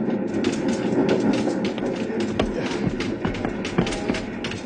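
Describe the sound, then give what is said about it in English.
A small train with a wood-loaded tender rattles along steadily, wheels clattering and knocking irregularly over uneven rails, with a constant loud rumble and sharp metallic clicks. “The little train jumping, rocking over the uneven rails.”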